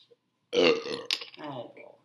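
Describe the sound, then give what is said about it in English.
A loud, drawn-out burp rumbles for about a second and a half, with a brief catch midway before it trails off. “Also, we haven't had a burp on the pod yet, so.”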